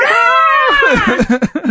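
A loud, shrill vehicle horn made to sound like a hawk's screech blasts for under a second as the vehicle drives up to a group of marsupials, startling them, its pitch sliding downward, then breaks into short, choppy vocal sounds.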